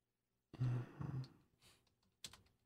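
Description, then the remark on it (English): Faint clatter of typing on a computer keyboard as a man looks up a game's point spread: a burst of muffled keystrokes, a short pause, then a sharper tap or two, fairly quiet. “Smash the keys. Well, or the mouse, or the entire keyboard.”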